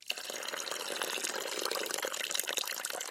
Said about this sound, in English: I tried to find a cue that sounded like liquid pouring onto cement or asphalt, and I couldn't find one. No, you nailed it.